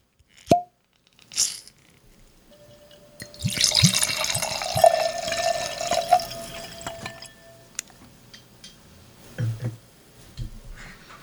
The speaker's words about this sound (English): I'm getting wafting. I've poured it in the glass.